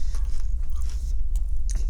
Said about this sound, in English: Are you gonna talk? You're just gonna crunch in the microphone.